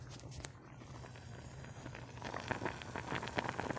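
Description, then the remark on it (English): Sausage sizzling and bubbling in a pan, a steady crackle of tiny pops that grows denser and louder halfway through, heard fairly quietly over a low background hum with no talking. “she bubbling. She bubbling.”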